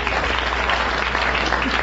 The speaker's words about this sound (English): Say, plumbers always get applause here.